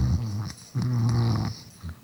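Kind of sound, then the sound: human body sound, person snoring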